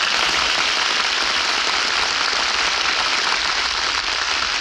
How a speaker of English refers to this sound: Hear that applause? Oh, they loved you, Jane.